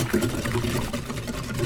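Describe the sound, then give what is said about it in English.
Spices being whisked into buttermilk to make a spicy batter for coating chicken: quick, steady wet swishes repeating several times a second over a low continuous hum, moderately loud throughout. “Now I'm going to whisk.”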